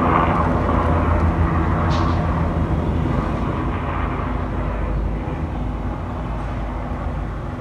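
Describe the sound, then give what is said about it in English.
A helicopter roars overhead, a loud, steady low rumble with droning rotor tones that fills the whole recording and eases only slightly toward the end, with no voices. “Want to see helicopters?”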